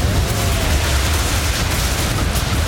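A loud explosion sound effect rumbles through the whole stretch, a dense, heavy roar with deep low-end boom and crackling debris noise that holds steady rather than fading, with no voices.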